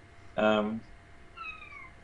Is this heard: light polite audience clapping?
no